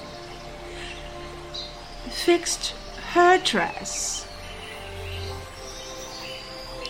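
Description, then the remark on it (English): A couple of short, bright bird chirps ring out in quick succession midway, over a faint steady background while a person speaks briefly. “You listen to the birds.”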